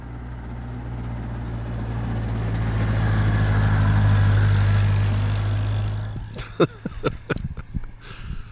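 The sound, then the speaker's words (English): A big lawnmower-like engine drones steadily, swelling louder as it passes by, then fades away, leaving a few sharp clicks and knocks at the end. “And so I needed to find a very quiet place to record, even though here comes a very large, like, lawnmower-y type thing.”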